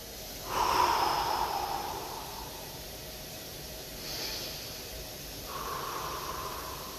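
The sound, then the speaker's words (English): Slow, deliberate breaths with no talking: a long airy inhale, a shorter breath after a pause, then a steady exhale. Soft and hissy against a quiet background. “But I'm going to take a second, be honest with you, and breathe.”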